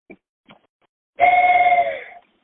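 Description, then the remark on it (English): A single steady train-style whistle blast, loud, holding one pitch for about a second before trailing off, preceded by two faint brief knocks. “Oh, I think that was the ghost train again. Is that an actual whistle you got?”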